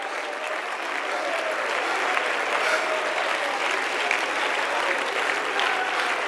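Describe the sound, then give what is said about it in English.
A large crowd at a sermon stands and claps steadily and continuously in praise, a dense, sustained roar of applause filling the room with no pauses for about six seconds. “Stand with me and clap your hands all over this room.”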